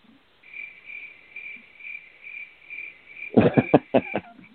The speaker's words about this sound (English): The crickets.